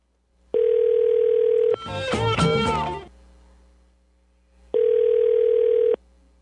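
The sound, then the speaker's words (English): Two steady phone-line tones bracket a loud burst of crackling, clicking line noise in the middle, like a bad connection on a telephone handset cord, during a phone call to a Winn-Dixie store. “I heard lots of clicking, like you had a bad cable, like the phone cable that connects to the handset”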